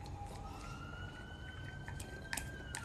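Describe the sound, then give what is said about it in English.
An ambulance siren from paramedics passing through the area wails steadily, its tone gliding slowly upward over a low rumble of traffic, with a few brief clicks and taps scattered through. No one speaks. “You hear these alarms?”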